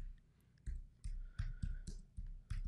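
Keyboard keys clacking in an uneven run of about eight sharp taps, each a crisp click with a low thud, spaced a few tenths of a second apart with no voices.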